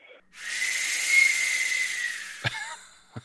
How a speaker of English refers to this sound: And believe it or not, they even had a sound for the air brake on the train.